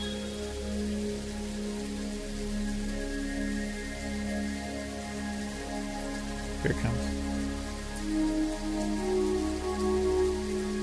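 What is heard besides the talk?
rain falling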